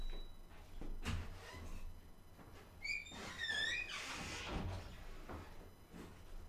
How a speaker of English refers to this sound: Let me close my door real quick.